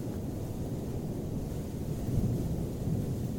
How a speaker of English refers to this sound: As he walked, there was a crack of lightning behind him like the snap of the snake's spine. It was followed by a distant anthem of heaving engines as wheels ground up a rocky hillside. The storm is nigh.